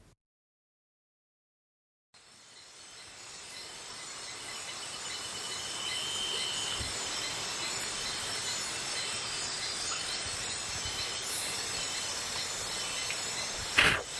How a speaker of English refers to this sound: I take us back there now with recordings I made on a trip some years back to a pristine rainforest tributary several hours upriver from Curimana, Peru.